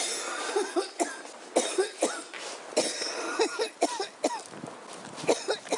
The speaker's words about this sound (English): There I stood on the rolling chair as I began to rip the bong. Smoke began filling the chamber, and by the end of my second breath, I inhaled all the smoke into my lungs and began coughing up a storm.